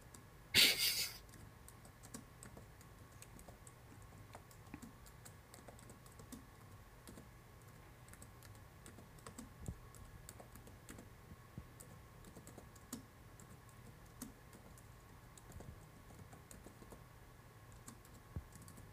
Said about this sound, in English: Dang, it's a lot of typing. Yes, it is. You really like typing the whole situation? It is a whole situation.